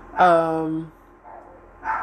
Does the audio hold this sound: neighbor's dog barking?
yes